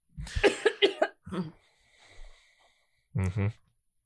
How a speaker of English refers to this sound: You got a cough into your arm, …. That cough that you just did didn't do nothing.